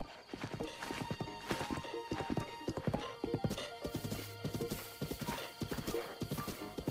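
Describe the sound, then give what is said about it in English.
Horse hooves clip-clop in a steady, quick rhythm, fairly loud throughout, as a horse is ridden, with soft music underneath: a high, staccato piano piece with violin playing beneath it, and a brief horse whinny at one point. “I think you have to be maybe riding your horse for long enough, or like, I don't know, maybe fast enough.”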